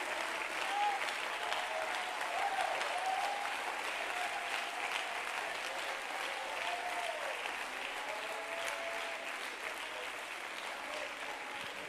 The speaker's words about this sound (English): Let's all stand together, clap our hands to the Lord.